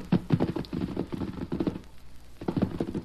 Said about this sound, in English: See the way those horses are greeting each other? Yeah. Golly. Well, that smaller white horse is the son of Silver.